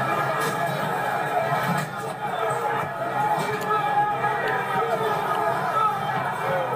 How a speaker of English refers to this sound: Nearby, a second group breaks through on another approach. Others jump fences. And now hundreds of rioters rush forward on several fronts.